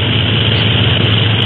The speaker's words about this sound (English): See, I can hardly believe that we're really flying in the Clipper. Seems most too good to be true.